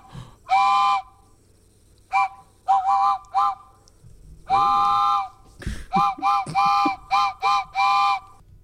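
train whistle

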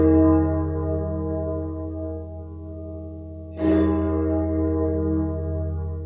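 tolling bell sound effect

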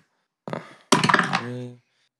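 dice being rolled

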